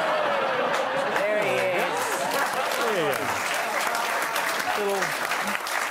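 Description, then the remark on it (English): An audience claps steadily throughout, a dense, loud wash of applause with excited voices and cheers rising and falling underneath. “Don't clap that.”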